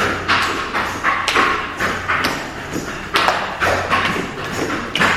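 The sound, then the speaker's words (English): Hands pat against a floor in a steady, repeated rhythm, a dull, moderately loud thud with each tap, continuing without any talking. “Reach your arms forward and just tap your hands against the floor.”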